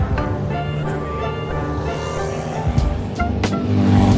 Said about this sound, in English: But racers were speeding by, making it impossible to cross the street.